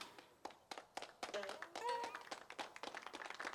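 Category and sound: crowd, clapping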